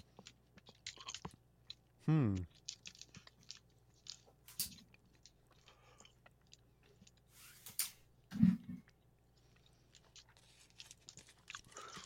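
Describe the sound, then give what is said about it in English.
Wet chewing of a sticky, chewy cream-filled holiday candy, with scattered mouth clicks and smacks, plus a couple of short muffled hums mid-chew; no one speaks. “I can't speak because my mouth is stuck together by the chewiness.”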